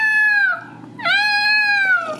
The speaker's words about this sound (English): With newborn baby kittens, they need to be fed about every 2 hours. And they will let you know by waking up and screeching.